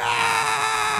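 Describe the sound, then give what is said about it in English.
A single loud, sustained scream from a performer making his entrance at a Battle Royal, held steady for a full second. It is bright and strained, almost like a rooster's crow, with no talking around it. “And I came out with this big scream, serious as all fuck.”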